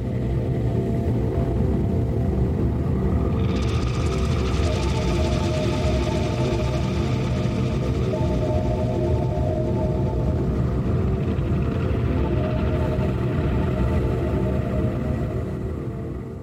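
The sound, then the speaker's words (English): Glitchy, droney ambient music plays steadily, with sustained low tones layered under a hiss of static and flickering high-end noise that swells in partway through and fades near the end. “And it is like glitchy and droney, and you can hear static, and it's like very futuristic, and it kind of keeps you on edge.”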